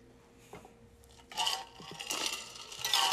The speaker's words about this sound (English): Sorry, I needed to drink water there.